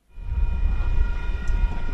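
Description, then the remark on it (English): A commuter train rumbles heavily at a railway station in Auckland, a deep continuous low roar with a faint steady high whine over it, fading in quickly and holding loud, with no voices. “Words never far from the lips of early morning train commuters outside the Britomart and Newmarket stations.”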